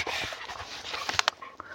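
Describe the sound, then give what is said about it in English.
Dogs yelp and bark in a few sharp, high-pitched bursts, two close together near the end, over a noisy, rustling background with no one talking. “The dogs are out of their minds and I kind of lost my focus”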